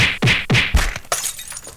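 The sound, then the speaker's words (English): A quick series of three heavy punch impacts with swooshy whooshes, followed by a final crunchy, shattering hit, loud and close with no talking. “Okay, hey, that punching sound effect is going to work right now as we are going to use it for the segment, the Mike Matthews New Tunes Feud.”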